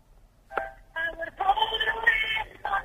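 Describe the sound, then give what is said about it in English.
Thin, tinny audio is played down a telephone line at a low level. A brief blip is followed by about two seconds of muffled, narrow-band tones with a short burst at the end. “Yeah, I'm right, come on, if you're going to play audio down the phone, get the levels decent.”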